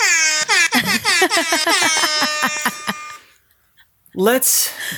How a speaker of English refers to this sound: Would you like the celebration music? Sure. All right.